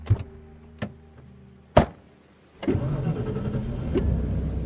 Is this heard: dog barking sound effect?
no